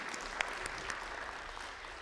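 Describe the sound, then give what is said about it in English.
An audience claps steadily, a dense wash of many overlapping hand claps with a few sharper standout claps, sustained at an even moderate level throughout. “Church, oh yeah, clap.”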